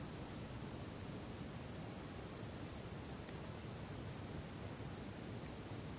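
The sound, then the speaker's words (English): A steady, even rush of flowing water continues without pause at a soft level with no voices or other sounds. “Weigh the sound of water.”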